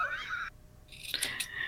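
A high, tonal chirp-like sound gives way to a brief pause, then two or three quick, crisp scissor snips in a short burst as someone pretends to snip their hair, fairly faint and with no talking.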